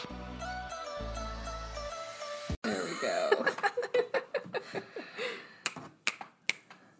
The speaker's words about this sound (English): I don't know what I just was doing. That's okay. Here I am still shuffling papers.